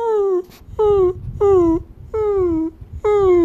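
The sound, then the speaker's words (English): A voice imitates a lost baby puppy on the beach whimpering while looking for its mom and dad: five high, whiny cries, each sliding slightly downward in pitch, repeated in a steady rhythm with short pauses between them. “And so what did little puppies do when they're looking for their mom and dad?”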